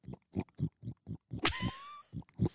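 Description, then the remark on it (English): A voice imitates a pig up close, making a rapid series of short, throaty grunts with a brief high squeal in the middle, loud and alone against silence. “I do a really good pig sound.”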